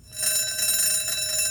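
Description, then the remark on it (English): A clock's second alarm-tone option, selected by touch, rings steadily and fairly loud like a school bell: a continuous metallic bell-like jangle starting almost immediately and holding without pause, with no voices. “She reminds me of a school bell.”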